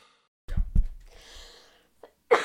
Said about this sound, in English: I had to cough.